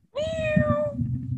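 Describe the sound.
A cat lets out one drawn-out meow, steady and fairly loud, lasting under a second, over a low rumbling background noise that continues after the meow stops.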